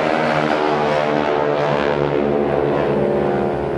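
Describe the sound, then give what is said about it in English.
A loud, steady engine roar with strong harmonic drone, like a propeller airplane powering up for takeoff at Oshkosh, filling the whole stretch without pause. “Airplane's taking off. Probably Aeroshell.”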